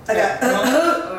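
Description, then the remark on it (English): A man's voice imitates a low, drawn-out groan, a single strained vocal sound about a second long that wavers in pitch, moderately loud. “So, he said, my girlfriend called me, and I heard a guy groan in the background.”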